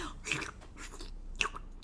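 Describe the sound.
Wet smacking and clicking of noisy bubblegum chewing, with two sharper smacks standing out over a soft, continuous mouth sound, no talking.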